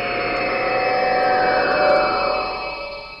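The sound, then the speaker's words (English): A teleport sound effect from the video game Destiny: a dense, synthetic electronic drone of layered steady tones that swells gradually, peaks near the end, then begins to fade, with no voices. “That was Destiny sound effect.”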